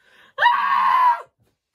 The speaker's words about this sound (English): Can you put like a screaming sound effect over it?